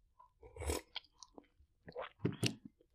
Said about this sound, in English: Let me sip my tea because this is hot.